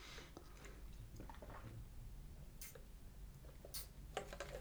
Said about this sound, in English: I'm just having a sip of water.